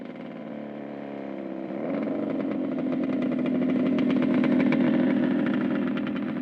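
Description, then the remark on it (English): A motorcycle engine rumbles steadily, growing louder and rising in pitch after a couple of seconds as the bike approaches and drives up to the back of a motel, then holds at a throaty idle-like drone. “A dark leather-clad figure drives up to the backside of the motel on a motorcycle and pulls off her full-face helmet.”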